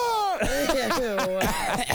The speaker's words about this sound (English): Oh, get out of here. You're making me cough. Stop.